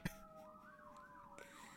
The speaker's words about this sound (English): And what is with the sirens today?